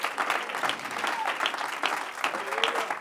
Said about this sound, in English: You believe that? Clap your hands and praise him.